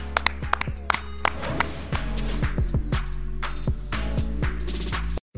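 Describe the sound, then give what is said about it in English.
Scattered hand claps, sharp and irregular, several pairs of hands clapping out of sync for about five seconds over a steady low hum, with no talking. “Clap it up. Clap it up.”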